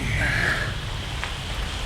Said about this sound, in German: Wie aus dem Nichts setzte ein Platzregen ein. Die Feuchtigkeit, die den ganzen heißen Tag über in die Wolken gestiegen war, fiel in einem Guss wieder vom Himmel.